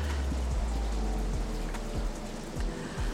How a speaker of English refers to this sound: The cold rain prickled at her skin.